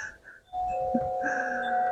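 Wind chimes ring with a clear, sustained metallic tone that starts suddenly and holds steady, joined by a few higher shimmering notes layered over it, with no talking.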